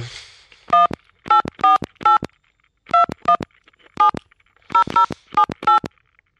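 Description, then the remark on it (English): A string of about eleven crisp telephone keypad tones, punched out in uneven bursts with short pauses between groups, loud with no voices or other sounds around them. “I don't even have a dial tone. Or is the phone not working?”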